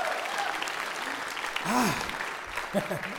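A crowd breaks into steady applause, dense clapping that swells slightly midway, with scattered cheers and whoops rising above it.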